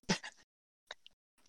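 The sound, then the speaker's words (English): Someone chews an Oreo cookie in three short, moist, crunchy bursts separated by pauses, the first loudest and the later ones softer, with no talking. “Sorry, I was chewing an Oreo and I was trying to hurry up and chew and chime in, but man, it took me a while to chew it.”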